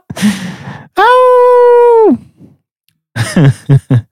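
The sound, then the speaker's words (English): A man's voice imitates a werewolf transformation: a raspy, breathy growl, then a loud sustained howl that drops off at the end, followed by a pause and a few short, choppy grunts. “Well, he's just like starts howling like a werewolf and then hangs up.”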